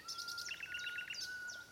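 A nightingale sings a rapid, rattling trill woven between bright, high whistled phrases over a thin sustained note, clear, with no voices.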